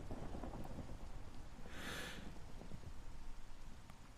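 Steady rain hisses throughout while low, rumbling thunder rolls underneath, with a brighter gust of rain swelling briefly around the middle. No voices are present.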